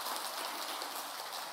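A church audience claps together as a clap offering celebrating that Jesus is victorious, in a dense, steady wash of applause, many hands blending into a continuous crackling patter with no voices over it.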